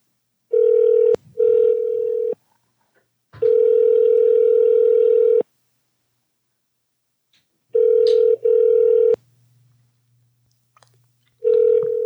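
A steady telephone tone at a single mid pitch plays in several stretches, broken by short gaps and clicks as the line is dialed, with a faint low hum under the later part.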